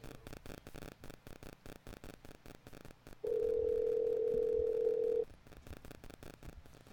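A telephone rings once before a prank call: a single steady, humming ring tone lasting about two seconds, clear and fairly loud over a busy, rhythmic background noise.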